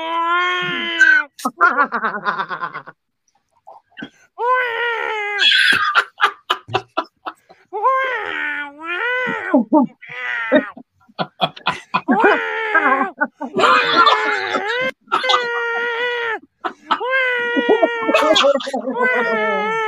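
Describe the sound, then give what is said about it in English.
A man's voice imitates a cat, letting out a string of drawn-out, wavering yowls and meows in bursts with short pauses, loud throughout. “Okay, guys, let's do a guy acting like a cat.”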